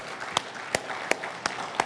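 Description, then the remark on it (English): Sharp claps ring out at a steady, even pace, five of them in under two seconds, over a soft background hum with no speech. “All right, don't clap too much. You're going to give him a big head.”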